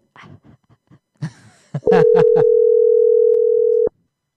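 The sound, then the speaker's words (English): A telephone dial tone holds one steady, loud mid-pitched hum for about two seconds, then cuts off abruptly. Brief muffled voice sounds and clicks come just before it starts. “I'm making some phone calls for my husband.”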